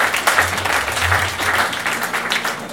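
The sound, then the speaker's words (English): An audience applauds steadily for everyone arriving early to the service, many hands clapping in a dense, continuous patter at a fairly loud level, with a low murmur of voices underneath. “A round of applause for being early.”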